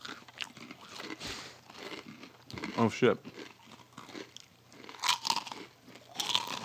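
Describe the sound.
A fortune cookie being bitten and crunched, with several loud, crisp crackling bursts spaced a second or two apart, mixed with chewing and a brief spoken exclamation.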